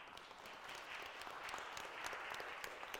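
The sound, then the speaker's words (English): A crowd claps steadily, a dense, sustained wash of overlapping hand claps at even volume throughout, with no speech over it, applauding a $1,500 donation to a Week of Compassion special offering. “But they more than matched our contribution for Week of Compassion and sent a check for $1,500 for our special offering for Week of Compassion, which is pretty remarkable and deserves applause on its own.”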